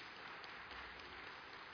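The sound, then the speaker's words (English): A crowd at a service applauds with steady, dense hand clapping that fills the whole clip at an even, sustained level, with no pauses or distinct individual claps standing out. “So please, can you clap your hands for our father, who is not here?”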